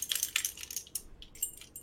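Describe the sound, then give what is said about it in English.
A bunch of keys jangles and clinks as it is handled, bright metallic rattles coming in quick irregular bursts for a couple of seconds, with no talking. “I just happen to have keys here with me. So I guess you would.”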